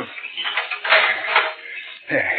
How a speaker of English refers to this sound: I have the key right here. I'll have the padlock off in a minute.